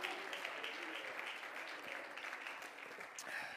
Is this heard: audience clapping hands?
yes